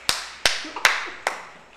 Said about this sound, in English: Clapping.